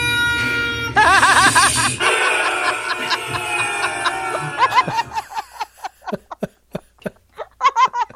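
A rubber chicken toy being squeezed squawks with loud, wavering squeals that overlap at first, then breaks into a quick run of short, choppy squeaks, all fairly loud with no talking.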